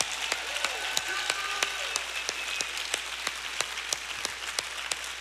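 An audience applauds steadily for about five seconds, a dense wash of many hands clapping with a few sharper individual claps standing out in an irregular rhythm, and no voices.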